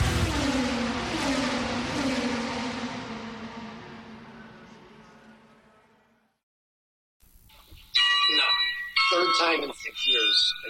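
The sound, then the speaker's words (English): A loud clock tower bell strikes once, its deep ringing tone and shimmering overtones slowly fading over several seconds into silence before bright, high tonal sounds begin. “Is that some famous clock behind you? Is that the clock tower?”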